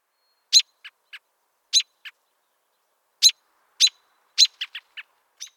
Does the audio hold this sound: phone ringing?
no